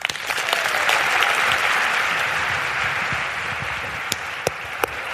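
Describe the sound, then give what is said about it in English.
Sustained applause from a large audience for a speaker fills the whole stretch, a dense steady wash of many hands clapping, with a few sharper individual claps popping out toward the end. “a humongous round of applause, because not only did she just inspire all of us to up our lives another level,”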